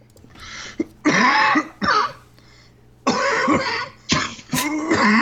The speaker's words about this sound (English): That was during show. So rough, dude. Sound like a lunger. I still have a lingering cough. I still sound a little bit like a lunger, but I'm going to keep pushing on through, and I'm going to have a lot of use of the mute button today.